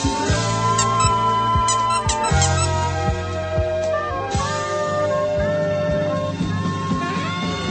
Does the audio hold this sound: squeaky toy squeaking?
yes